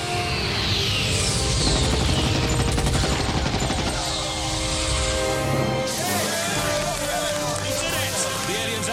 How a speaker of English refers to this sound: And let's get that little sod off Eyeball's tail. I'm going for guns. He's nicely in the display. Squirt of cannon up his rear end.